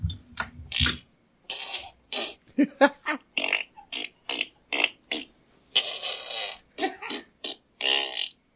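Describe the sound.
A voice imitates a series of farts with wet, sputtering mouth noises, about a dozen short bursts in an uneven rhythm, fairly loud, with no actual speech.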